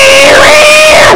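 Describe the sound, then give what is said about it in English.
A person's voice imitates a cat shrieking in pain: one loud, sustained high-pitched wail lasting about a second, wavering slightly before cutting off. “it's making all those awful cat noises. It's just, like, writhing around and shrieking”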